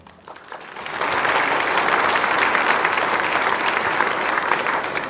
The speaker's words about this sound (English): So nice how all these invisible ghosts in the audience are clapping. It's so great.